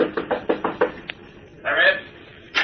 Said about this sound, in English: Finally, he finds room 314, the number Batman had given him, at the end of the hall. He stops and knocks on the door.